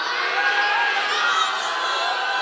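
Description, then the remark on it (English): A large crowd shouts and whoops together, making Lion King noises, in a loud, continuous roar of overlapping voices that goes on without a break for a few seconds. “I'm not hearing enough Lion King noises in here.”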